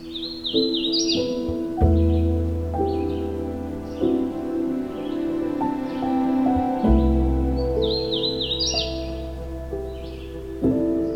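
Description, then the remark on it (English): A hooded warbler in the Halton Forest, a Carolinian forest, sings its primary song, a bright rising-and-falling whistled weety weety weetio phrase, twice, near the start and again near the end, with fainter chirps between, all over steady sustained low tones. “but its primary song sounds like a weety weety weetio.”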